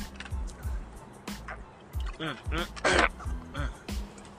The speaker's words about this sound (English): Now, if you hear me talking weird now, I got the fucking hiccups for some reason. But, let me drink some water, clear my throat.